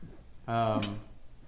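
A single low, throaty burp that breaks into a short, harsh cough partway through, fairly loud, lasting about half a second amid quiet background.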